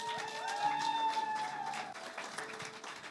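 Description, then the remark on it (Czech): A church audience at a Klikostel service applauds steadily for a few seconds to welcome the preachers, dense clapping with sustained musical tones ringing beneath it. “takže můžete prosím vás přivítat.”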